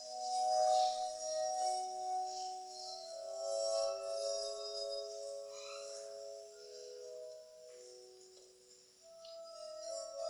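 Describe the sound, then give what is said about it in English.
Sustained, glassy humming tones ring out at several different pitches, overlapping and shifting like a glass harmonica, with a shimmering high edge and no voices. “And it really does kind of sound like when you play with a glass. It doesn't sound like a harmonica at all.”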